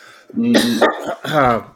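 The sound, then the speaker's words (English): Two harsh, loud coughs in quick succession, throaty and partly voiced, as someone sputters after swallowing wrong; no words are spoken. “Sorry, swallowed wrong.”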